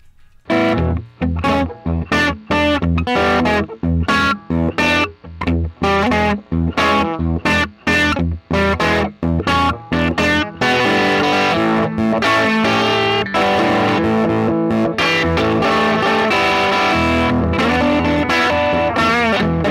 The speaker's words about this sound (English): I'm going to play a little bit of guitar.